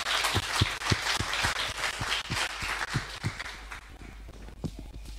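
round of applause

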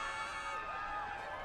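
crowd cheering

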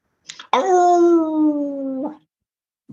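dog barking and howling

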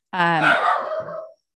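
dog barking

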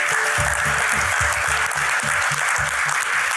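audience applause

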